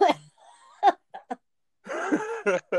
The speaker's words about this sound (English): Sorry, I just took a hit off of the pipe and I'm like coughing.